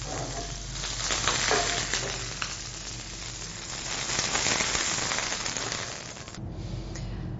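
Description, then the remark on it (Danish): Chanterelle and trumpet mushrooms fry in a pan with a steady, crackling sizzle that swells and eases, broken by a few soft clicks of stirring. No one speaks. “Kantarellerne de skal, og trompeten den skal bare lige vendes hurtigt.”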